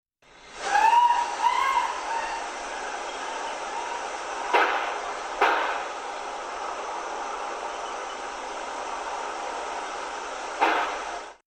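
Audio from a camera next door: a woman's high, wavering scream rises over steady hiss at 9:15, then two sharp gunshots crack about a second apart. After roughly six seconds of only hiss, a third gunshot rings out.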